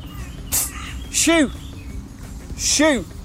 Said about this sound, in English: Oh, my God, Attack of the Birds. Oh, shit, that just missed my head, that... It's because it thought your head was a bird's nest.